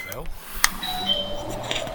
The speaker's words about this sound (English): Did you hear that? He had a real traditional door chime.